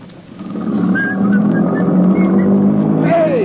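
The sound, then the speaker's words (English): A car engine starts up and quickly builds to a steady, loud rumble as the vehicle pulls away, with a few thin whistling tones above the engine noise. “Where are you going? Come back here! Come back with that car!”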